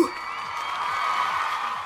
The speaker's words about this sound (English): and get ready for the cheering crowd. 3, 2, 1. Go!